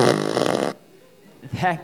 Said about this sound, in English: That gift was a fart machine. As soon as they gave it to me, I put it to work.